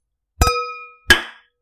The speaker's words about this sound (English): I can't really cheers with an empty can on my glass, but know that I did, y'all.